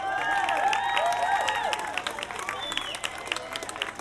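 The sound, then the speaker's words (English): A large crowd of all ages, dressed in pride colours and waving flags at a pride festival in Macclesfield, cheers and applauds, with high whoops and shouted voices over steady clapping; loudest at first, then easing slightly while the applause carries on. “Oh, come on, make that cheer a bit bigger for the gorgeous Malachi.”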